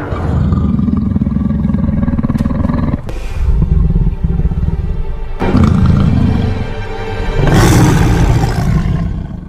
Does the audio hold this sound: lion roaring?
yes